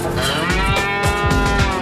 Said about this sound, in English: That's a cow.